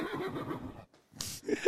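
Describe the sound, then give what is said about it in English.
A horse from the Boston Animatronics Incorporated stable line whinnies loudly and shakily, then after a brief pause gives a breathy snort and another short, rising neigh, with no one talking. “New horse stable line. New road horses out there, guys.”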